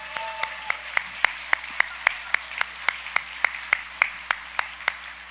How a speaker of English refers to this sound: Would you please give our teaching pastors a round of applause, please?